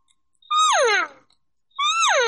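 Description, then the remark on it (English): An imitated cow call: two loud, drawn-out bleating moos, each about half a second long, sliding downward in pitch, with a short pause between them and no talking. “So when you throw it in your mouth, you're basically going, so I'll do a cow.”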